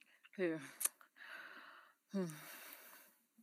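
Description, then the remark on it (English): Heavy breaths rush into the microphone, two voiced sighs or gasps, each trailing into a long airy exhale, loud, with no clear words. “Why are we all breathing down the mic?”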